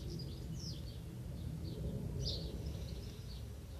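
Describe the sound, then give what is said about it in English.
Small birds chirp in short, scattered high notes, a handful of quick calls over a steady low rumble of outdoor background noise. “Just the little birds that are around.”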